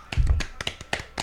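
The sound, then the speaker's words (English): A short burst of hand clapping, about six or seven sharp, crisp claps in a slightly uneven rhythm, with a low thump near the start and no talking over it. “I give y'all an applause.”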